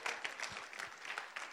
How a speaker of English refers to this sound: Come on, give the Lord a clap offering, amen?